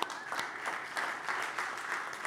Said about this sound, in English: Your mom? Can we just give a clap for moms?